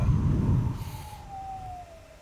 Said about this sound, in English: That was a police car, right? No, that was me whistling. Oh, I was okay. Taking my breath, bro. Oh, that reminded me of a police car, but like a siren.